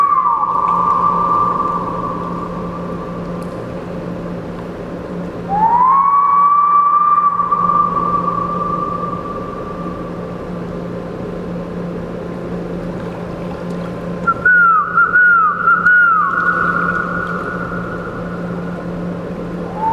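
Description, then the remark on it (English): A person alone whistles an imitation of a loon call to the loons: a long, rising wail held steady, then a wavering tremolo call, all over a constant low droning hum, with no talking. “Sometimes the loons call back to me, but most of the time I'm just all alone out here, whistling to myself, basically.”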